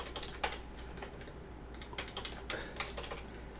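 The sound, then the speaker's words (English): Clicky typing on a computer keyboard, irregular bursts of keystrokes over a low steady hum, with no voices. “Go ahead and start talking while I'm typing this all in here.”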